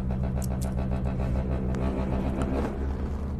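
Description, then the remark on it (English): The built-in lumbar back massager of a light-up chair runs with a steady low mechanical hum and a strong droning buzz, like a small motor running continuously, with a few faint clicks and rustles on top. “So it also comes with a back massager for like your lumbar and stuff like that.”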